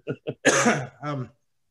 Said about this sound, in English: Sorry, I have a cough for no reason.